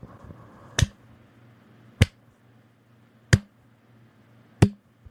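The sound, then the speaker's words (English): A slow clap given after two brothers finish singing: four sharp, loud claps spaced evenly about a second and a quarter apart, each ringing briefly over a faint low hum, with no talking. “Slow clap.”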